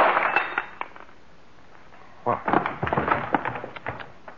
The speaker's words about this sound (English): Well, you're no gentleman. You knocked Miss Moore out with a bottle.